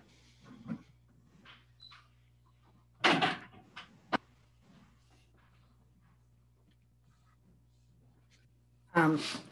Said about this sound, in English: I gotta shut my door. I apologize.